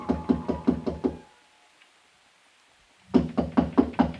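Quick, even footsteps thud in a hallway in a steady rhythm, break off into about two seconds of silence, then start up again at the same brisk pace, stopping outside a door. No voices.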